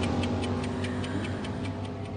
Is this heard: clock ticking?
yes